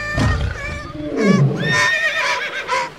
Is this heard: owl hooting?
no